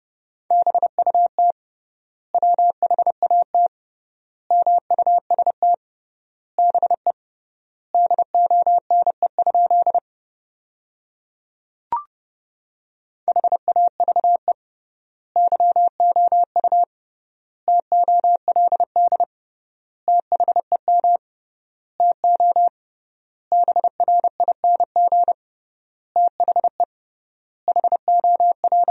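Morse code at a quick 30 words per minute with triple word spacing, sending practice sentences built from the top 500 words: bursts of short and long beeps on one steady mid-pitched tone, grouped into words with clear gaps and a brief click during one longer pause.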